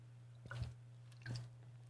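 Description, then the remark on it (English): Two short, wet slurping sips of alkaline 8.8 purified water, spaced under a second apart, over a steady low electrical hum with no talking. “I might offer something snarky if anything makes me snark, but let me take a final sip of alkaline 8.8 smooth hydration purified water.”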